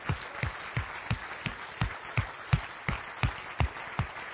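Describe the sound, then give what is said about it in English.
Steady rhythmic clapping from an audience giving a standing ovation to honor people who have invested their life, sharp claps landing in unison at a regular beat over a bed of scattered applause, with no voices audible. “Today, I want you to give them a standing ovation. Just stand up and clap and celebrate the people who have invested their life.”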